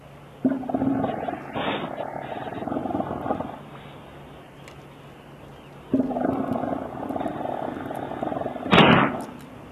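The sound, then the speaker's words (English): Elephant seals, animals whose home is the Antarctic, give two long, deep, throbbing guttural calls, loud, separated by a brief pause, over a steady background hiss. “For animals, birds, and humans, the Arctic is home, as the Antarctic is for the elephant seals that you hear.”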